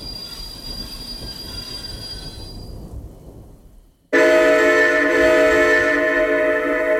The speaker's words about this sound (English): One long whistle blasts through the thunderous storm, indicating the approaching station, followed by the squeal of brakes being depressed.